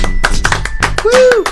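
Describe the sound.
A short burst of applause from a few people in a studio welcoming back a guest: sharp, uneven hand claps over about a second and a half, with a brief whooping voice rising and falling near the end.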